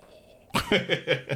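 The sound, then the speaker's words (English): A person imitates a growl with a rough, raspy vocal burst that breaks into several short pulsing bursts, loud and alone, after a brief quiet moment. “That's my version of growling.”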